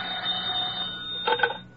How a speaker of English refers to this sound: It can happen to you tonight, right in your own home. Suddenly the telephone bell will ring.